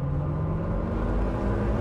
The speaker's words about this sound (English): I am in a GMC Hummer EV. It's a white four-door electric pickup, and it has 1,000 horsepower on tap. That's three or four or five times what some other cars would make. The power comes on with this whooshing and whirring of the electric motors.